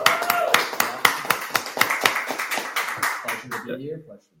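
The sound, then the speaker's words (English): A small group claps loosely together for about four seconds, sharp hand slaps layered into a brisk, uneven patter, with voices murmuring underneath as the applause trails off. “Let's clap it up.”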